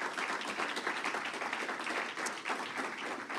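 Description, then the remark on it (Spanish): An audience at a worship service applauds the Lord, many hands clapping into a dense, even wash of sound that stays loud and unbroken for a few seconds with no talking over it. “Dele un aplauso al Señor, hermano.”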